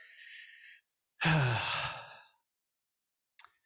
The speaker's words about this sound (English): Let me just pause and breathe, and in my breathing, pray.